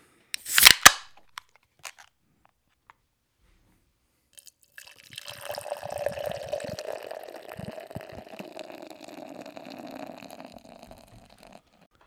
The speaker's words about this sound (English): The beer is all poured out. It's looking pitch black as it fucking should for an Imperial Stout. The head is nice and foamy.